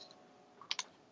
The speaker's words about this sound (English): Lee, is there a pen? I feel like I hear clicking or something. Or tapping? Are you fiddling?